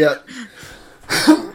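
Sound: coughing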